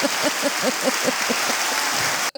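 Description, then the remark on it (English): A quick, steady run of about a dozen hand claps over a constant hiss, evenly spaced and fairly loud, stopping abruptly at the end. “Please clap.”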